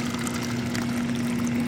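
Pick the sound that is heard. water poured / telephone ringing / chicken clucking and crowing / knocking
water poured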